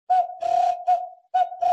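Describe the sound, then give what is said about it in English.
A person whistles an imitation of an African bird call: five breathy, fairly loud bursts on one steady mid-pitched tone, some short and some drawn out, with no talking. “And that's like so accurate that when I did that, they all picked up their bows and arrows because they thought there was a bird nearby.”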